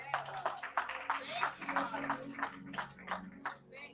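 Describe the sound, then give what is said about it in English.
A church audience claps for God steadily for several seconds, sharp overlapping hand claps forming a loud, uneven patter, with a low sustained hum of voices or tones underneath. “Can you give God one more hand clap?”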